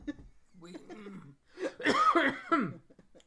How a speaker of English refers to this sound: Okay, stop giving him dirty looks for coughing.